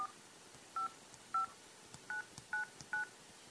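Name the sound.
phone number being dialed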